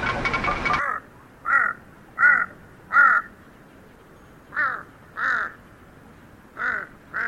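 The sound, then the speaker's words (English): A huge Tibetan crow hopping across a high field calls repeatedly with harsh, hoarse caws, spaced in uneven bursts about a second apart, clear, after a short burst of rustling noise at the start. “Huge Tibetan crow.”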